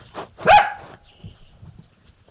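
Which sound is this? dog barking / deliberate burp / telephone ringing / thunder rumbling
dog barking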